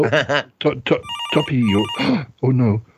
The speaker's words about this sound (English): your phone is ringing.